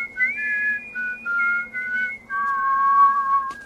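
A person whistles a slow Christmas melody alone, clear and close, with sustained pure notes stepping between pitches in a smooth, steady phrase.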